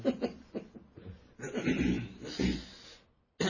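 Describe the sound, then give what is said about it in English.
A short run of coughing bursts, then a longer rough, throaty spell that sounds partly like a chuckle, ending in a brief pause and one more sharp burst. “You cough in a very kind of superhero way.”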